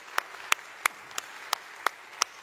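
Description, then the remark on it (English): Seven sharp, evenly spaced claps welcoming those watching online, out of town or across the world, in a steady rhythm, about three per second, crisp and moderately loud over a quiet background, with no cheering or voices. “Let's give a big cheer welcome to those that may be watching online or out of town or across the world.”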